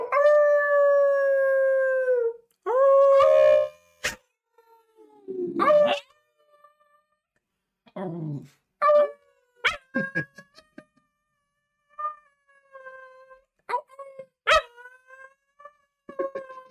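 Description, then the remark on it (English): A male dog, asked to do his awoo, lets out a long, wavering howl, then a string of shorter yips, whines and rising awoo calls, each with clear harmonic tones and brief pauses between them; no talking. “Also, should we have him do the awoo? Yes, yes. Let's have him awoo.”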